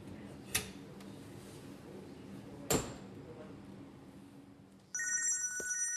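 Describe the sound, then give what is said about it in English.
Two sharp knocks or clicks sound over quiet room noise, then a telephone starts ringing near the end with an incoming call, a bright, steady electronic trill, fairly loud. “Tuesday, the following day, and I get a phone call”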